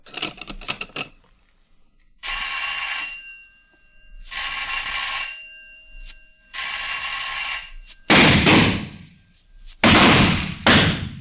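bell ringing

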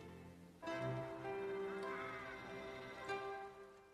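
cat meowing

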